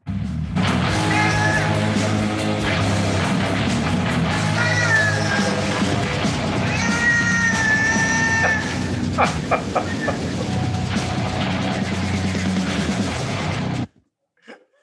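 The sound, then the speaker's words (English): Loud, dense heavy metal music with distorted guitars and pounding drums, layered with repeated high, warbling cat meows sampled into the mix, running continuously before cutting off abruptly near the end. “Somebody sampled like some meows into a heavy metal band.”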